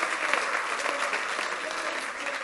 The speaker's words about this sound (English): We have such gifts here. Can we just give a round of applause for our pastors